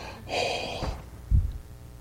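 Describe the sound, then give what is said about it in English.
A heavy, airy breath rushes into the microphone, followed by a low thump-like exhale; no talking, just loud breathing. “I have to stop breathing into this mic. I feel like Darth Vader or something.”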